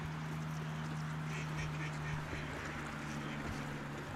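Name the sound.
ducks quacking and honking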